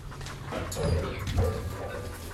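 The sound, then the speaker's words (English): A dog whimpers and makes soft yelping sounds in short bursts at an animal shelter in Houston, Texas, over a low rumbling background with no talking. “We have cats, dogs, rabbits, guinea pigs.”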